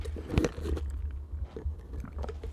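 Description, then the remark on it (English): Someone takes a quick sip of leftover Starbucks coffee, with soft wet slurping and a few small mouth clicks and swallow sounds, quiet and with no talking. “Excuse me, just took a sip of my leftover Starbucks.”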